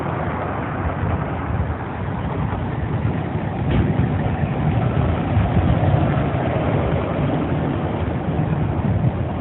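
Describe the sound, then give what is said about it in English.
A car that has just pulled up outside a courthouse idles steadily, a low continuous engine rumble that holds level throughout with no voices over it. “I'm going to make her get it in the car that just pulled up, huh? Got it warm in the car.”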